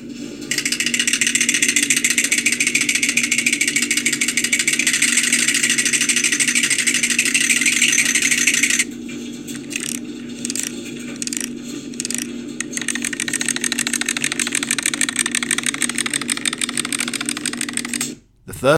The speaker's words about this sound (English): That is that's the sound of the dryer. So that's the native sound. Of the dryer. So the first round of what's in Chappie's dryer. Here we go. So the dryer's going.